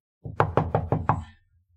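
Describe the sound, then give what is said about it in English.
Five quick, evenly spaced knocks on a wall beside a door that is left ajar, solid with a dull thud to each, followed by a short fading ring and then quiet. “I'm gonna, like, knock on the wall beside the door, and, like...”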